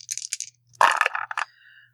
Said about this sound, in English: 4 fate. You're always going to roll 4 fate dice and then add the value that is associated with that skill. Coming your way.